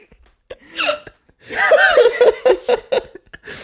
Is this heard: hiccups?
yes